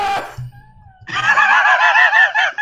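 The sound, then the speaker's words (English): The cartoon character Keitro's signature scream: a loud, shrill, warbling cartoon-style scream bursts out and holds for over a second, preceded by a brief vocal sound and a short thin tone. “I love how the Keitro scream has become a meme, yet he only did it once in the second episode.”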